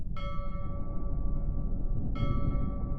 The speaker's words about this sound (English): The ship bell. But the hour hasn't turned. There's no storm. Who's ringing it?